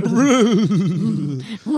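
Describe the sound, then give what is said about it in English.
A person imitates a horse's whinnying laugh, a loud vocal neigh with a rapidly wavering, bouncing pitch lasting over a second, ending with a brief pause and a short final burst. “That was my best go at a horse.”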